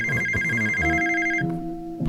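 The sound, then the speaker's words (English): A telephone rings at 4:35 a.m. while the Clintons are asleep, with a loud, warbling electronic trill that pulses rapidly for over a second, then cuts off, leaving low sustained tones underneath. “The phone is ringing.”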